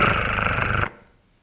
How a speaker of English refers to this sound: It's a very loud cat, actually.